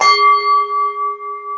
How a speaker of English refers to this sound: All right, it's my point. Give me the bell.